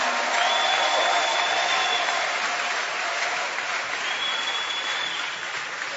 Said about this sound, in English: Are you happy about that? If you are happy, clap your hands for the Lord.